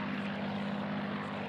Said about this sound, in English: We can hear a B-17 bomber fly by right there. I love that you can identify the plane by the sound. Actually, that might have been a P-51 Mustang. I was going to say. The sound of a Merlin engine.